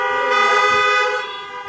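Several car horns blare together in a steady, loud chorus of overlapping honks that holds for over a second, then tapers slightly, with faint low rumble underneath.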